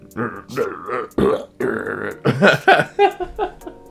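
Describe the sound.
A voice imitates a video game character's burpy gibberish speech, a run of croaky, belch-like syllables delivered in uneven, chattering bursts for a few seconds.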